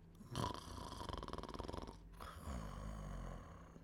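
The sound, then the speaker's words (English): A loud snore from a witch asleep in bed: a long rattling inhale with a rapid fluttering buzz, followed by a softer, breathy wheezing exhale. No one speaks. “In 2 minutes, she was snoring.”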